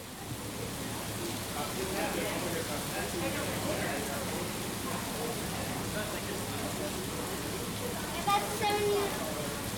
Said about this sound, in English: to CBC headquarters as the summer thunderstorm was just beginning. After a thorough downpour, we finally made it to the main crowd of Our Time's CBC Change the Debate rally